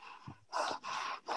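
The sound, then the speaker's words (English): A voice imitates heavy, angry breathing: three loud, forceful breaths in quick succession, harsh and airy, with a faint low grunt before them. “when you're angry, you know, you can tell someone's angry sometimes just by their breathing, you know.”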